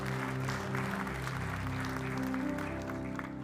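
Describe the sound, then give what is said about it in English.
An audience claps steadily for those who may be praying a prayer of salvation, a dense, continuous patter of many hands holding an even level throughout, with a sustained low musical tone underneath and no speech. “Let's clap for those that may be praying that prayer right now.”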